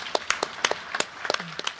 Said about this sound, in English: And we're just so proud and delighted for all of you. So this is our time to applaud for this great group.